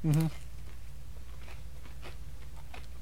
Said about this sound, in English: Dude, this is for frozen pizza. Honestly, you can't even really tell. I do like the crunch.